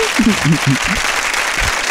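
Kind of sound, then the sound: crowd, applause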